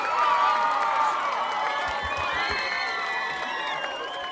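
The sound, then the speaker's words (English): A crowd cheers and applauds loudly and continuously, with overlapping whoops and shouts over steady clapping, plus a few dull thumps partway through. “Let's just do another round of applause.”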